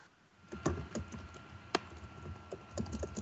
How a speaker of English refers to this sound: Someone's typing something.